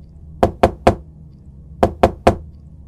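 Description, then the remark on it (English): Two sets of three firm, distinct knocks on the cobweb-covered back door of a house, separated by a short pause in an otherwise quiet setting. “I found the cleanest area available and knocked.”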